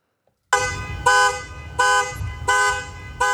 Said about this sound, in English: I'm just peeking out the window. I'm not too concerned. That's the car alarm going off right now.